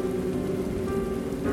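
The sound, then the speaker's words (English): Steady rain patters and drips from a ceiling on a rainy night in Ecuador, a continuous wash of droplets with a faint low hum beneath and no voices. “Rain drips from the ceiling.”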